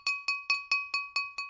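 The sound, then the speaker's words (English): A drinking glass clinked seven times in quick, even succession, each bright ringing tap decaying briefly before the next, clear with no voices. “The clink of a glass versus the verbal ding, ding, ding, ding, ding.”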